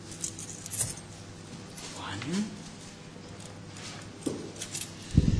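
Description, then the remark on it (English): Thirty silver coins clink as the chief priests count them out for Judas Iscariot, a few light, scattered metallic chinks spread over several seconds, with faint murmured vocal sounds in between. “They counted out 30 silver coins and gave them to him.”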